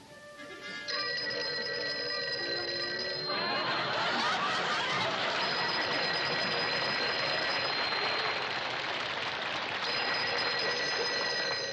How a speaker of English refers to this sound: you're supposed to answer the phone, too.